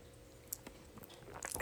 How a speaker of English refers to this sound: Take one more sip here.